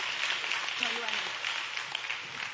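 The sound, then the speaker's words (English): A crowd claps together in a steady, dense wash of applause that holds at an even level throughout, with a faint voice briefly audible underneath. “Y'all give me a better hand clap than that.”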